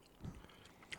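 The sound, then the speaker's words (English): Chewing of a soft snack with a weird consistency, with a couple of muffled, squishy bites followed by a brief wet click, quiet and without any talking. “I'm not getting hours of fun munching on those.”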